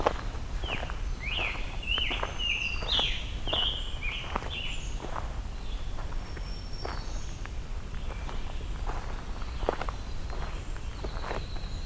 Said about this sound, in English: Some black-capped chickadees here too. I think as the air temperature's warming up, the songs are starting to pick up.